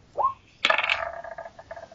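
A large die clatters onto a hard table, a sharp first hit followed by a quick rattling tumble that fades out over about a second, with a short faint tone just before.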